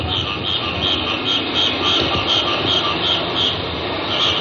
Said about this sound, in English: Now, here's the night sound. This is 10 o'clock at night, maybe 2 in the morning. I don't recall exactly, but hear the sound of the Thai night. Bring it up. The sound of a tropical sound. Night sounds in Bangkok, Siam.